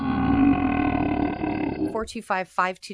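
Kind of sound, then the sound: human body sound, burp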